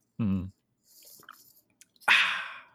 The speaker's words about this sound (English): My three favorite things are coffee, which I'm drinking right now. Let me do a sip for dramatic effect here.